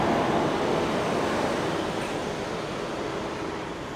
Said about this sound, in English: Sorry, it's so noisy. It's just I'm out here on the street. It wears me out too. I mean, I get so tired of the noise.